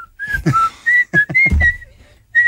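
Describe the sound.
Someone whistles a series of short, bright notes in quick succession, fairly loud, with brief breathy or voiced bursts mixed in between the notes.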